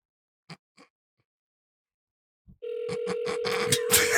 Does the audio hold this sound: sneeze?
no